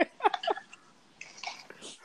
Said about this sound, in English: Hold on. Somebody breathing hella hard.